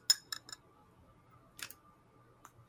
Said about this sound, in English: No, they're not going to smell it, but they're finna hear it. This is like the Wayne lighter flick. Check this out.